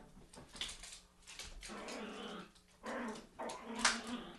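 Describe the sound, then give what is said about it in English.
A female dog growls and whimpers in playful bursts, with rough rumbling sounds broken by a few higher squeaky yelps. “She's just playing. She just wants to play so bad.”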